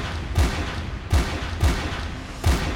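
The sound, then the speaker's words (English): Five loud, sharp gunshots ring out at uneven intervals, each a booming crack with a low thud, heard over a noisy, muffled 911 emergency phone line from a woman's house during a break-in by an intruder, with no talking. “A few seconds later, you hear 5 gunshots.”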